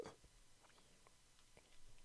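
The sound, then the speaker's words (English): A single short, sharp hiccup right at the start, fairly soft, followed by near silence with only a few faint clicks and small mouth noises. “Those goddamn hiccups.”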